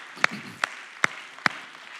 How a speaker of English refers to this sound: Praise the Lord. Let's clap our hands one more time to the Lord this morning.